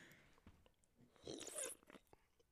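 A wet slurp of someone sucking up a drink, swelling to a brief noisy peak midway and then trailing off into soft mouth sounds, with no talking.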